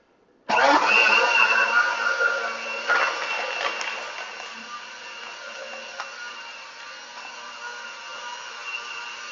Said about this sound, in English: We're going to run the blender again.